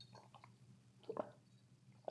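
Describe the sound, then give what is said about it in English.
Someone quietly sips water, with a few soft, wet mouth and swallowing sounds spaced out over a couple of seconds and no talking. “Pardon me while I take just a sip of water here.”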